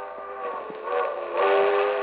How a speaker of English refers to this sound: A train. If I can make that train. It's a quarter mile along the edge of the field of the tracks.